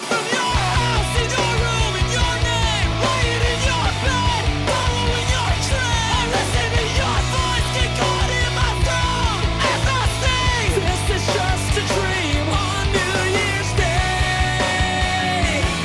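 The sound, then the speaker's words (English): A loud, dense rock song plays continuously, with heavy bass and distorted guitars under a strained vocal that sits between screaming and singing, raw but held back. “I liked the, it was like not fully screaming, but not singing. It was very intimate, I guess.”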